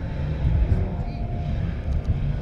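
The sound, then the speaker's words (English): An off-road race car rumbles past at the Chocolate Thunder rock garden obstacle, its engine a deep, steady low-pitched roar that swells slightly midway and holds fairly loud for the whole couple of seconds. “There's a pretty cool vehicle coming through right now.”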